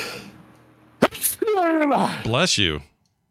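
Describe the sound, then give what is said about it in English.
A single loud sneeze: a sharp breathy burst, then a strained, voiced drawn-out cry that cuts off abruptly into silence. “It's hard when you have to sneeze.”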